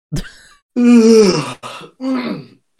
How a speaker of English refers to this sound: I don't know if that was a real yawn or that was real.